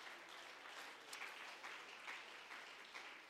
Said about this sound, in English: Can you clap your hands unto the Lord? Praise God. Hallelujah.